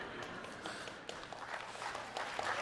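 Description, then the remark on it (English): Sparse, scattered clapping from a small audience, a soft crackle of uneven claps that lingers steadily for a few seconds without any talking. “I know there's just a few of you of the clapping there that are with me on the fruitcake.”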